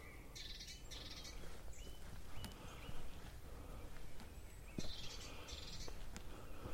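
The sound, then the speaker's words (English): An agitated tit calls in two short clusters of rapid, high-pitched scolding notes, fairly faint and somewhat distant, over a low outdoor background hum with no one talking. “And that we've upset one of the birds. Sounds like a grey tit, I think.”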